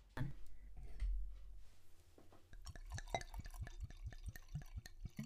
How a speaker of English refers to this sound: Wow. What a sound. Oof. That was delectable. The best. Delightful. I poured way too much. It's not to the brim, it's so you're fine.